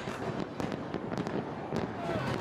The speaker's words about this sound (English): Oh, it's about to be 2024 in Rio de Janeiro. Right now, there are fireworks on the bay in Copacabana. A stunning show of fireworks here in Rio.